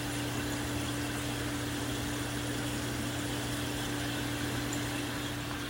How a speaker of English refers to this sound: For now, simply listen to the sounds of water.